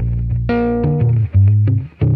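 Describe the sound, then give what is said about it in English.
An electric guitar with a humbucker pickup and flatwound strings plays a short run of loud, sustained, slightly distorted notes and chords, changing roughly every half second, with no talking. “He puts on this really loud humbucker pickup you find on like a metal shredder guitar. But then adds flat wound strings, which you'd conversely find on a jazz guitar.”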